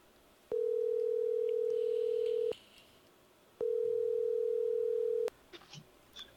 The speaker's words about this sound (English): Let me call his other number, his home phone.